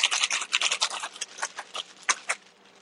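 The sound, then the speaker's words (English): Rapid rustling and shuffling of a zip-shut plastic bag of flour being shaken with three or four sliced chicken pieces inside, with bursts of bright, papery scratching that rise and fall irregularly, loudest at the start and fading toward the end. “So our flour, I'm just taking probably three or four of these pieces of chicken right here that we just sliced up, dropping them in the bag of flour, zip it shut, and shake it up.”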